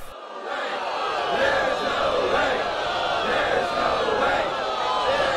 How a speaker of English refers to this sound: Well done, Emma Watson. Give her a clap.